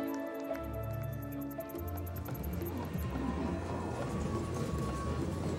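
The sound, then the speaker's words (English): Horse hooves galloping in a horse race watched at a local casino's bar, a dense, continuous rumble of many hoofbeats that stays loud throughout, over a low steady hum, with no clear voices. “Months later, Jack sat on his favorite stool at a local casino's bar watching the horse races.”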